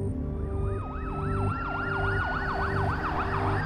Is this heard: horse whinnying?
no